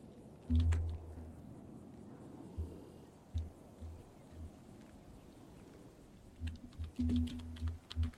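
Scattered key clicks on a computer keyboard, tapped irregularly in short bursts with pauses between, fairly quiet, ending in a quicker flurry of presses. No one speaks.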